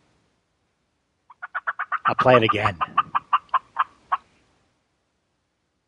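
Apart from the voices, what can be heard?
turkey gobbling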